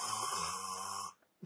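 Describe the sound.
A voice imitates a mother's loud, drawn-out snore during a movie, lasting about a second, rough and buzzy, then cuts off into a brief pause followed by a short breathy sound.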